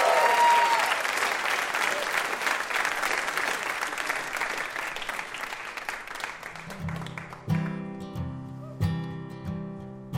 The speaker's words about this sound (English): Have a round of applause for our VIP, Steven Strogatz.